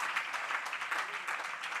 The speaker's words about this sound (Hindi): प्रभु का धन्यवाद हो, अपने ताली बजाई.